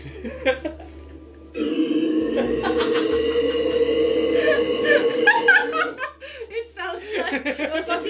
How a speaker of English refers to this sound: It sounds like it's not even real. While he's burping, he has this look on his face that he can't believe it's going on for so long. He's just so shocked.